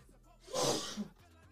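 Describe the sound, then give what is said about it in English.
A single loud sneeze bursts out, a sharp breathy blast lasting about half a second with a brief rough tail, with no talking around it. “Bless you.”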